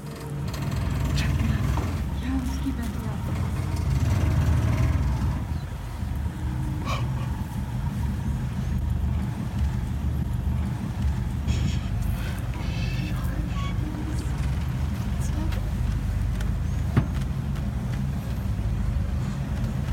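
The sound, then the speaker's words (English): A Land Rover engine idles on a safari with a steady, deep rumble that holds for the whole stretch, with faint scattered clicks and rattles above it. “So I am in a Land Rover”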